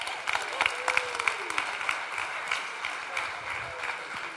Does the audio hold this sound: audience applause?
yes